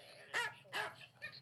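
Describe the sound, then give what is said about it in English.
A dog named Django lets out three sharp, high-pitched yelps, each a short shout-like cry resembling a martial-arts yell, likened to Bruce Lee, with brief pauses between; the last is shorter and softer. “My dad says he sounds like Bruce Lee.”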